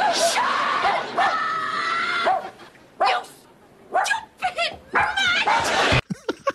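A dog barks and whimpers repeatedly, with high yelping cries and whiny bursts in an irregular rhythm, loud and agitated, with short pauses between outbursts.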